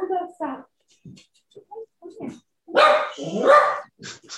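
A dog barks in a scattered series of short yaps, building to two louder, longer barks near the end, with brief quiet gaps between them.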